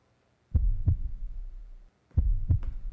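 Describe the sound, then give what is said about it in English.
Two deep, booming heartbeats in a promotional video, each a double lub-dub thump, pulse slowly over a low rumbling drone, loud, with a short quiet gap between them. “Oh, the heartbeat of Chicago.”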